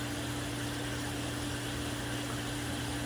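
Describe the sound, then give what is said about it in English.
A steady, continuous rush of falling water from a waterfall water feature beside the worshiper's path before the sanctuary of a temple in Independence, Missouri, dense and unbroken, with a faint low mechanical hum beneath it and no voices. “I'm currently sitting by the worshiper's path near the waterfall right before entering the sanctuary.”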